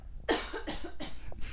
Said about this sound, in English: Sorry. Hold on. I have to cough.